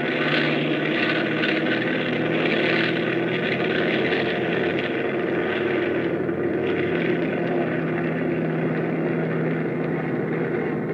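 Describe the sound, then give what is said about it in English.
A propeller aircraft's engines drone loudly and steadily as the plane takes off, a dense roar with a humming low tone holding constant for the whole stretch, with no voices. “It all starts to add up when the plane takes off.”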